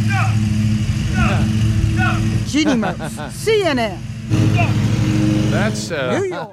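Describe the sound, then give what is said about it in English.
A lawn mower engine drones steadily and loudly throughout, a low buzzing hum that never lets up, while people talk over it. “I mean, the emu starts having their own kids, and they don't like that mower.”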